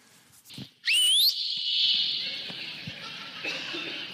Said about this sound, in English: My mama's 88 years old, and she could do that today if she were here. She's the one who taught me how to whistle like that. Mother would come on the back porch, and we could hear that all over the neighborhood.